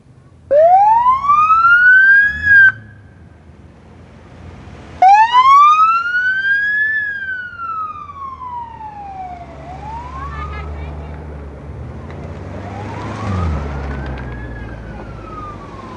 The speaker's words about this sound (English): So that's what we're doing here in Effingham at Mid-America Motor Works. And the cars are leaving now, heading out to Memphis.